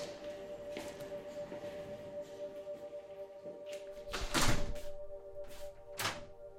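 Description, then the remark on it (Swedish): A toilet door in a shop thuds shut, a few knocks and clatters around the closing thump, with a steady hum underneath and no talking. “Vi går in och stänger dörren.”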